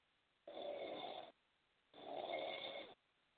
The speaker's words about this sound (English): You sleeping, nigga? Oh, this nigga is snoring on the phone. Oh, hell no, nigga.